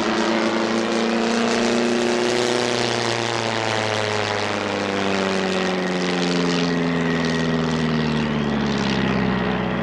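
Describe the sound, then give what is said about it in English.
A propeller aircraft engine drones steadily in flight over the Peace River as the plane, on wheels rather than skis, heads to land on the river ice. A loud, continuous buzzing hum with stacked tones whose pitch slowly sags and wavers, with no voices over it. “I think they want us to land there, on the ice.”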